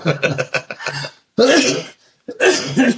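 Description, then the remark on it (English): A run of short, throaty bursts followed by two louder, harsh coughs with a brief pause between them, rough and voiced, with no talking. “Still got this cough.”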